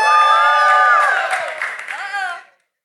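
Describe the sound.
A church crowd erupts in loud cheering and whooping for the Chiefs, many voices shouting at once with high, overlapping tones for about two and a half seconds before cutting off abruptly.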